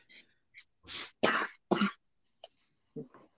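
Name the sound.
coughing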